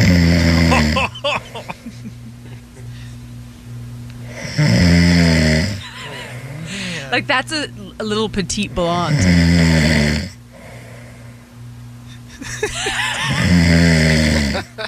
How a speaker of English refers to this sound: And it's, to be honest, it's insane to think that those noises come out of, like, this is literally her snoring.